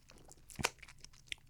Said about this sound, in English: I'm eating chicken wings.